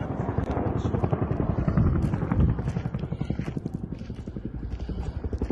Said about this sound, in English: And with the helicopters buzzing in the back, it's extremely